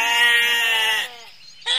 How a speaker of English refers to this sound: We tried to ask them what happened, but sheep are so hard to understand. They just kept saying it was bad.